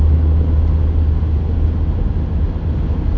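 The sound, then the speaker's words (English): Loud, steady highway traffic roar with a heavy low-end rumble, like a semi truck passing, continuous throughout with no voices. A semi truck on the highway cuts off a car travelling at about 80 miles an hour. “We have a jackass semi right now that just cut off this other car that was going like 80 miles an hour on the highway.”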